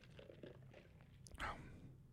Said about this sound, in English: Again, oh, excuse me while I take a sip of some water here.